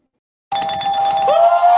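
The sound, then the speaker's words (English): A truck backing up, heard as a loud, sustained electronic tone that starts abruptly, holds a steady mid-high pitch, then shifts slightly upward partway through, with no talking. “The truck's backing up because they're hearing us.”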